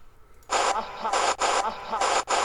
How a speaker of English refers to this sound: So in between the static, when the static stops is when you hear the uh-huh.